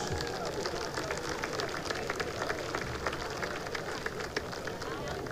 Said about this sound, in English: Let's please give our sponsors represented on the field tonight a big round of applause.